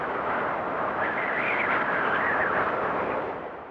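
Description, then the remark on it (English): A voice imitates the wind with a steady, breathy whoosh lasting a few seconds, with a faint wavering whistle riding on top before it tapers off at the end. “The wind sounded like this.”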